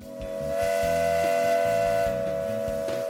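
A loud, sustained steam whistle, a lunch whistle, blows continuously with a steady, piercing multi-tone pitch, backed by hissing and a low rumbling underneath, with no voices present.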